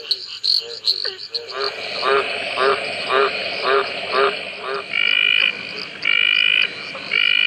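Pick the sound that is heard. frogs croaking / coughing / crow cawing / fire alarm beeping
frogs croaking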